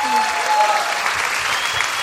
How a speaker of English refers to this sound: Just bathe in it. Let it wash over you. What? That applause. They're so happy to see you.